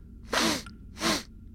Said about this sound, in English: Are you actually sniffing me? Yeah. You smell like the aristocracy.